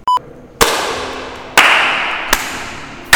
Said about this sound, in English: Back clap.